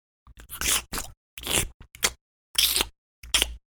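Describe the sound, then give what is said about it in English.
Someone chews a grape with wet, crackly crunches: about six irregular bursts of munching, fairly loud, separated by brief silences, with no talking. “I'm sorry, I'm going to eat this grape.”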